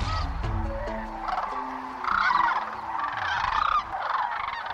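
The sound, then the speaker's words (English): A large flock of migrating sandhill cranes calls continuously along the Platte River in central Nebraska in spring, many rolling, trumpeting cries overlapping into a dense, steady chorus, with a few louder swells and no voices. “One of the best-kept wildlife secrets in this country is the migration of sandhill cranes, which arrive in central Nebraska along the Platte River each spring as they're migrating north to their nesting grounds”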